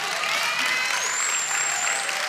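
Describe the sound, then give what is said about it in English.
An audience claps steadily for the speaker's wife, a dense wash of many hands that holds at an even level for a couple of seconds with no voices standing out. “Somebody should clap for my wife.”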